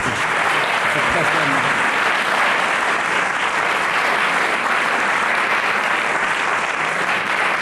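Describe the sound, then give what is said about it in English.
A large audience claps steadily and loudly for several seconds, a dense, continuous wash of applause with no pauses and no one speaking over it. “Let's have a huge round of applause for that, ladies and gentlemen.”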